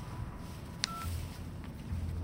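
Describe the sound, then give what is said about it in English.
A single sharp click of a phone handset being set down, followed by a brief faint electronic beep, over a low steady hum with no one speaking. “I hung up the phone and saw a text message sent at 4:32 a.m.”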